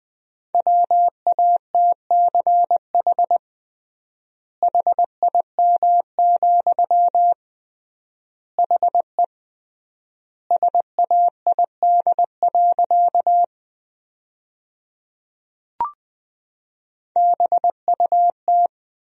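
Morse code sent as a steady mid-pitched tone at about 20 words per minute, with triple word spacing, sending sentences built from the 300 most common words: bursts of dots and dashes broken by long gaps and a single faint click partway through.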